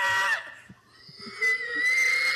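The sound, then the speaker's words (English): A man's voice lets out loud, shrill, drawn-out squeals imitating a pig, two strained bursts separated by a brief gasping pause. “It's almost like he's fucking being possessed by a pig.”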